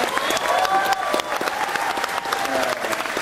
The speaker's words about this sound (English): So Mark Hamill gets a big applause from the audience when he says, you know, I just want people to be excited. I want them to be surprised.